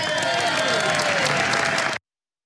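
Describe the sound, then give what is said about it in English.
A crowd bursts into sustained applause as President Barack Obama signs the Affordable Care Act into law, dense clapping at a steady, loud level for about two seconds before cutting off abruptly, with faint tonal hum underneath. “The applause was so, so worthy right there.”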